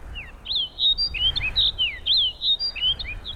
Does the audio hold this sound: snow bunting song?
yes